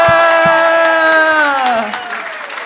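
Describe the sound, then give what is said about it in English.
An audience claps and cheers steadily as guest Adam Spencer is welcomed on stage, with a loud sustained tonal whoop ringing over the applause before it all fades slightly toward the end. “Keep clapping. He's coming.”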